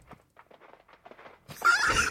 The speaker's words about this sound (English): Here come the horses. I got the horses in the back.